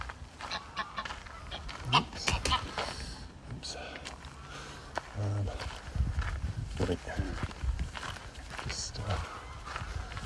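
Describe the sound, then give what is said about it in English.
A panicked goose honks in agitated bursts as it gets over a barbed-wire fence, harsh calls repeating irregularly over about ten seconds, with scuffling and rustling movement underneath and a person's voice. “Watching a rather panicked goose get over a fence, so I was a bit worried it was going to get caught on the barbed wire, but it got over fine.”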